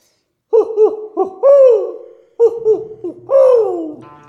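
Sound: owl hooting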